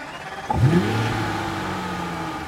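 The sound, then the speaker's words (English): A car engine catches and revs up, its pitch rising sharply, then settles into a steady hum as the vehicle pulls away. No one speaks. “I started the car and we drove.”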